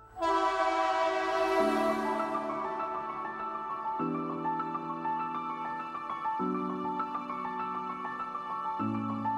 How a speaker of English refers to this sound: The train is exiting Purpose Station. Next stop, next episode, Priority Station.